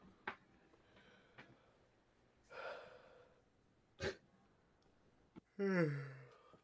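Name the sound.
yawn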